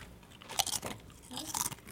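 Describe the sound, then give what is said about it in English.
Crunching of a crispy jalapeno chip, several sharp, bright crunches in irregular bursts as someone bites and chews, with no talking. “Can I get a chip? Jalapeno.”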